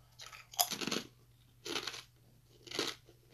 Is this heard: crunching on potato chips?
yes